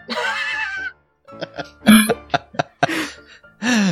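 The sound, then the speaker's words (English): A series of short, sharp bodily bursts, several quick coughs or hiccup-like catches in a row, framed by longer voiced vocal sounds at the start and end, fairly loud. “So you continue in silence, punctuated only by the occasional of a cough suite.”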